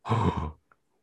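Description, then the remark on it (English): A person lets out a single short, breathy gasp, fairly loud, lasting about half a second, followed by a faint click and then quiet. “So I have them here, and with your gasp, I think you have them higher or much higher.”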